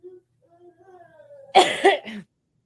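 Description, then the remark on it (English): A quiet stretch with faint, thin tonal sounds gives way to two or three harsh, loud coughs, bunched together in quick succession. “Yeah, I'm dying. I'm trying not to cough.”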